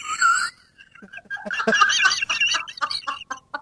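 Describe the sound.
A person's voice imitates an eagle call: a short, high-pitched screech, a brief pause, then a longer raspy, squawking cry, loud.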